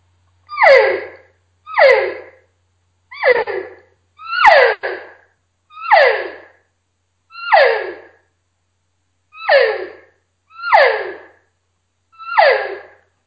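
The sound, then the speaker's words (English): A series of nine standard nasal elk cow calls blown on a game call, each a short descending mew, spaced about every second and a half, loud with no talking. “This is what it would sound like just doing what I would refer to as just a standard nasally cow call.”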